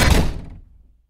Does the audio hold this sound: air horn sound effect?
no